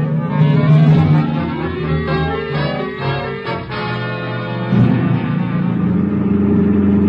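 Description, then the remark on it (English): A car engine rumbles steadily, its pitch rising and falling as it revs and shifts while driving through a city to a radio station, with a heavy low-end drone throughout and no voices. “Okay, pull up in front of the building.”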